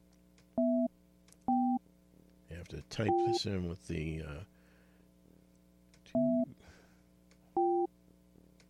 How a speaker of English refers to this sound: I wish there was a way I could turn that ringer off.